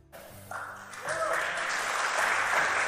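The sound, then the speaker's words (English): A crowd breaks into applause, the clapping building quickly into a dense, steady roar of many hands, with some voices mixed in underneath. “He got an applause, but I don't even know what the fuck he meant.”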